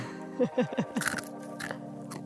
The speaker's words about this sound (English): Crunchy chickpeas. Oh, crunchy chickpeas.